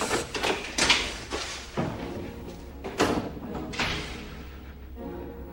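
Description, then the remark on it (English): A door is worked open with a series of heavy thuds and clunks spaced a second or so apart, over a steady low rumble and scraping handling noise. “Open the door.”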